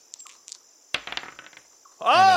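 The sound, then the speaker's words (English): A die is dropped onto a hard tabletop for a stealth roll in a tabletop role-playing game, landing with a sharp clatter and a quick run of fading rattling clicks, showing a natural 20. A few light taps come before it, and someone starts speaking right after. “Roll me a stealth.”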